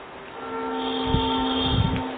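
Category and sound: vehicle, train passing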